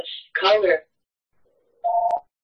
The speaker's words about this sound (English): Of course, the minute he unmutes, his phone rings. Of course.